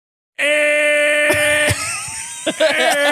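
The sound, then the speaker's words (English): A voice imitates a long, angry car horn: one loud, sustained, brassy blare held steadily for about three seconds, with slight wavers and breaks near the end. “Here's a honk that I don't like.”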